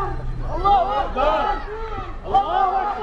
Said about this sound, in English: An impromptu protest breaks out as the crowd swells in size and anger.